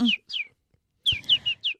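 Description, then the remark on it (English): Birds chirp in short, high, downward-sliding tweets: a quick pair, a brief pause, then four more in rapid succession, clear with no one talking. “Let's fly. Do it. Let's do it. Chirp, babies, chirp.”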